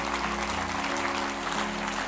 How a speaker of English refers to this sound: Come on, let's give the Lord a big hand clap for his word. Amen. Amen.